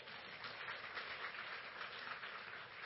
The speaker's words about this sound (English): Somebody was starting to clap, but it was weak.